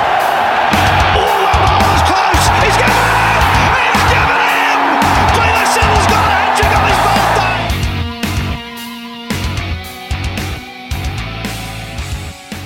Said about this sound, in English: Chris Lynn has taken the wild thing and sent it possibly under the roof. It's on the roof. Look at the look on his face. Crowd cheers.